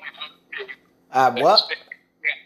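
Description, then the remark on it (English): A phone notification alert goes off: a few short chirpy blips, then a longer warbling, almost quack-like tone, followed by one more brief blip, moderately loud. “I just got a notification.”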